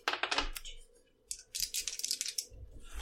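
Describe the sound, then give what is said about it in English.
Two dice, a D8 and a D6, clatter across a hard surface in two bursts of quick, sharp clicks and rattles, with a short pause between them and a low rumble near the end. “So you roll a D8 and a D6 and use the better one.”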